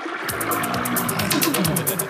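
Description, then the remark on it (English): A toilet flushes to open Bill and Marty's 5 o'clock news flush in Springfield, a loud, steady rush of swirling water lasting a couple of seconds, with rhythmic bright splashing and a low gurgling undertone. “Uh-oh, because it's time for Bill and Marty's 5 o'clock news flush.”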